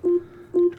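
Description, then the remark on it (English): Two short, steady electronic beeps from an Amazon Echo Dot smart speaker running Alexa, evenly spaced about half a second apart, each a clean mid-pitched tone with no talking over them. “Turning it up so y'all can hear it. Beep, beep.”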